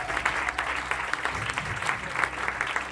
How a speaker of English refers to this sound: So can I get one more round of applause for all the acts you saw this afternoon? Thank you very much.